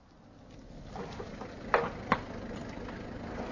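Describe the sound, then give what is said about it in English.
A car engine rumbles low and steady, growing slightly louder as the car drives up at the Villa Geneviève and settles into an idle, with two brief sharp clicks partway through. The car carries Giraud, Jacques Renault and two gendarmes. “A car's just driven up.”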